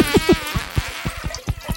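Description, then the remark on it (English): A fart sound effect, a buzzy, sputtering low rasp of rapid uneven pulses lasting under two seconds, fairly loud and with no voices over it. “No, I was going to start, but I forgot about the fart.”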